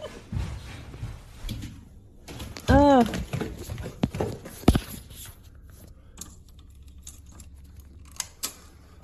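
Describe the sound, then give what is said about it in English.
Light, quick clicking taps like a ping pong ball bouncing across a floor, irregular and fairly faint, with a brief wavering tonal sound partway through and a low background hum. “Because you hear how it sounds like a ping pong ball like going across the floor.”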